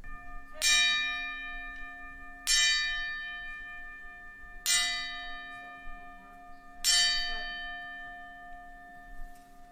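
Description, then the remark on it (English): A ceremonial bell tolls four slow, evenly spaced strikes as part of a 10-bell salute at a show, each a bright metallic clang whose rich ringing overtones hum on between blows. No one speaks. “Like, they're really butchering this fucking 10-bell salute.”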